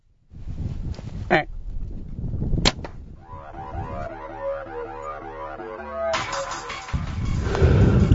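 An arrow is loosed from a bow at a buck during a deer hunt with a sharp, sudden snap, set against rustling outdoor noise, followed by a stretch of wavering, layered tonal sounds.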